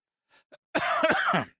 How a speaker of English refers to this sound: All right, cough it out.